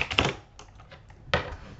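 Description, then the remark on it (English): Quick, clattery keystrokes on a Swedish computer keyboard, a burst of taps at the start, a few lighter clicks, then another firm cluster near the end; fairly quiet, with no voices. “I can't type, but that's okay. Yeah, it's okay. It's a Swedish keyboard.”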